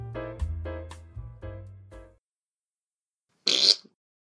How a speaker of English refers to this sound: Well, I think Charlie has just proven here conclusively that spiders do fart. You can thank us later, science.